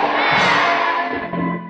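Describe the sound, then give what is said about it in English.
An audience loudly shouts amen together, a dense roar of many voices swelling at once and holding for a couple of seconds before starting to fade. “Let your amen thunder.”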